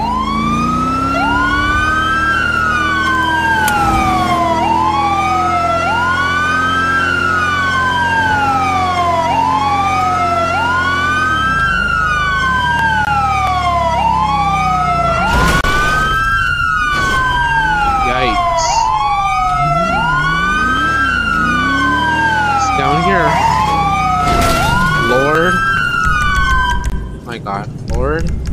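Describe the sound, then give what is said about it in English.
A police car siren wails loudly as the car responds code 3 to a car driving in reverse at the Ron Alternus Wind Farm, in steady rising-and-falling sweeps over a low engine rumble, with a few short horn blasts partway through. “1-King-32, somebody gonna be responding code 3 to a car driving in reverse.”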